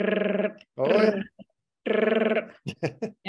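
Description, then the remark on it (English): A voice imitates a DTC printer churning out trade tickets and settlements: buzzy, pulsing vocal rasps in three bursts, each with a fast mechanical stutter, then a quick run of short clipped clicking sounds. “So for your younger people in the audience, there was literally this thing called a DTC printer, and it was constantly producing and printing the trade tickets, the settlements, right?”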